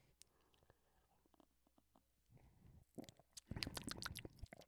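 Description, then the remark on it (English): Someone sips a strong hazy imperial IPA beer: soft, wet mouth clicks and smacks build into a few louder gulping swallows toward the end, with no talking. “And this is described as a hazy imperial IPA.”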